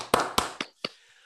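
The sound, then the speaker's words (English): Four sharp hand claps in a slightly uneven rhythm over about a second, each a crisp, bright smack with a short ringing tail, followed by a faint fading hiss. “Like, and honestly, like, can we give him some claps?”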